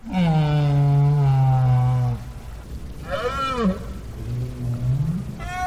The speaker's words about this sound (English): Fifty years later, Parks made another recording of right whales at the Bay of Fundy, where Maine meets Canada.